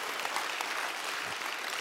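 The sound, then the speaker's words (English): A crowd of people clapping their hands together, a steady, dense patter of applause holding at an even level throughout, with no voices over it. “If you believe that, can you clap your hands in here today?”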